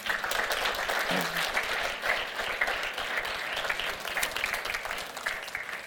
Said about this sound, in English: Thank you. Let's give him a clap.